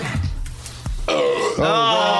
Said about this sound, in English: I'm not going to puke. I'm just going to burp.